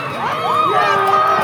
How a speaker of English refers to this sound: Neighborhoods erupted in cheers and honking horns.